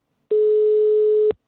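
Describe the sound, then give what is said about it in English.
A German telephone ringing tone on a call to someone in Germany: one flat, steady electronic beep lasting about a second, clear and fairly loud over a phone line, starting and stopping abruptly with silence around it. “German ringtone. Not pleasant.”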